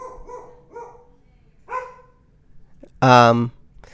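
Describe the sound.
A dog lets out one loud, sharp bark near the end, preceded by several fainter, shorter vocal sounds that could be softer barks or muffled voices.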